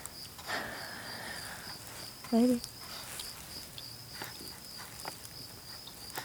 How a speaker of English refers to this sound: Maybe. Hopefully it's something to go eat that goddamn cricket, but... I think birds eat crickets.